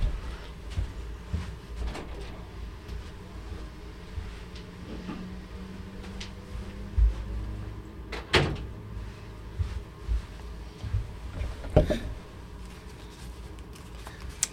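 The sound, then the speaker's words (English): A door is opened and later shut, with a sharp latch clack around the middle and another firm thud a few seconds later, amid soft shuffling and handling noises, as someone steps out to grab a C4 from right outside the door. “Hey, as you're looking that up, I have a C4 that's right outside this door. I'm going to grab it.”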